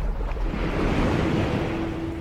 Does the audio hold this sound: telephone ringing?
no